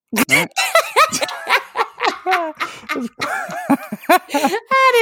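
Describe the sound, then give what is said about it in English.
A person mimics a crow's harsh caw in a series of short, raspy vocal bursts, mixed with snickering laughter, ending on a higher, strained cry. “For the listeners, what's a crow noise?”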